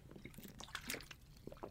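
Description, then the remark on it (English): Quiet wet, liquid sounds of someone taking a swig of water: a few soft sloshes and gulps with small drip-like clicks, no talking. “Let me get a swig of water real quick.”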